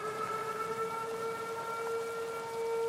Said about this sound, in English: Crap, tornado siren.